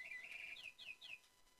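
A mechanical toy bird chirps: a sustained high whistle, then three quick descending tweets in a steady rhythm, fairly faint and heard alone without talking.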